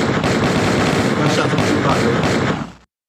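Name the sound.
gunshot sound effect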